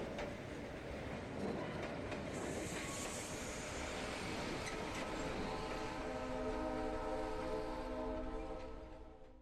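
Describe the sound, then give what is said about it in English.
A train barrels across the prairie at 80 kilometers an hour, a loud, continuous rumble and rattle of wheels on track, sparking metal against metal, with sustained metallic whining tones rising through the second half before the noise starts to fade. “The rattling tracks, the thundering pulsing of the wheels as they spark, metal against rushing metal. There is a train.”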